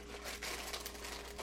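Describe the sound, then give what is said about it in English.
A Chicken in a Biscuit cracker box being opened: a run of soft, papery rustles and scrapes with a few brief tearing bursts, fairly quiet throughout and with no one speaking. “I'm opening the chicken and a biscuit cracker box.”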